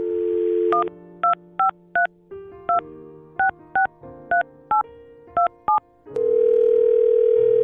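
A steady telephone dial tone, then a quick sequence of about eleven short, evenly paced touch-tone beeps punched in over a quieter hum, before a louder tone returns at the end.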